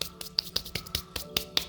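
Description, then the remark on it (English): Playing cards being shuffled: a steady run of about nine crisp, snappy clicks, each a bright flick, evenly spaced at a moderate volume with no voices. “It's supposed to be shuffling the cards.”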